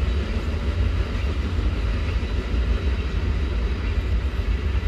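The motor of an old Ranger boat drones steadily in the evening, a deep low rumble with a broad wash of hiss on top. It holds an even loudness throughout, with no voices.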